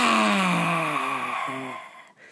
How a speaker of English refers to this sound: One of my favorite tools is a breath called Lion's Breath. the way it works basically is you breathe in through your nose, you breathe into your belly, and it's a long exhale, sticking your tongue out and folding your body down like this.